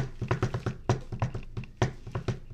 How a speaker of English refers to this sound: But, like, if you use your fingers to drum...